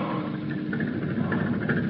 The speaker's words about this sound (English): Those are the diesel engines powering our new trim submarines with names like Sculpin, Skipjack, Stingray, Shark.